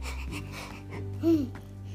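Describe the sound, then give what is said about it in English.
A person imitates a dog panting with tongue out, making quick, breathy huffs and a brief wheezy, whining note, fairly quiet, with no clear speech. “Stick your tongue out and breathe. That's how you pant.”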